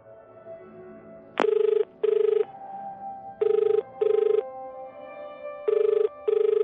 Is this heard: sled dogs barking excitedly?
no